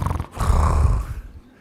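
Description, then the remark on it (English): A voice imitates a woman snoring during a meditation class: one loud, rasping, throaty snort lasting about a second, then trailing off into a softer breath. “I remember this one woman coming here, and she was sitting in the back there, and she lay down, she went fast asleep, and she started snoring.”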